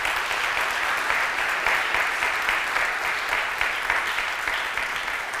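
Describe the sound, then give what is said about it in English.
Steady audience applause, a dense wash of many hands clapping at an even loudness for several seconds, with no voices standing out above it. “Hey guys, listen, I always say this, and some people want to beat up me up, my wife get mad at me, but listen, applause, I appreciate it, but I don't really like applause, okay?”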